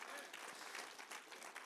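An audience breaks into steady applause, many hands clapping at once in a dense, continuous patter that holds an even level throughout.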